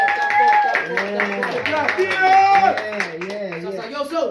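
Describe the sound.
A round of applause, steady for a few seconds, with voices talking and calling out over the clapping throughout.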